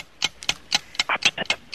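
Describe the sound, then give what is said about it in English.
A game clock ticks steadily during a word quiz round at about four crisp ticks per second, alternating slightly in tone, clear with no voices over it. “Start the clock now.”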